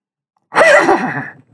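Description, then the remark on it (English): After a moment of silence, a voice lets out one loud donkey-like bray lasting about a second, its pitch wobbling and sliding downward before trailing off. “That was a donkey.”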